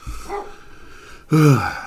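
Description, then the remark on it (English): A dog barks loudly, a single sharp bark with a rising, harmonic yelp near the end, following a quieter low woof or grumble at the start. “I am really sorry about this dog. Ugh. Muzzle him!”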